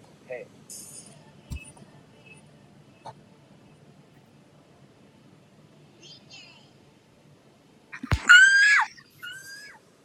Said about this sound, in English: Could y'all hear that? Yeah, what the fuck was that? I screamed because I didn't watch out yet.